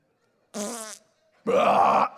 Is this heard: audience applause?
no